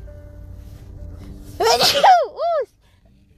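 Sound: sneeze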